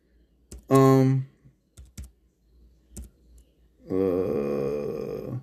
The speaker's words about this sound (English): I'm just typing up something up real quick.